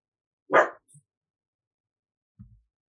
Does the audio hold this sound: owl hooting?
no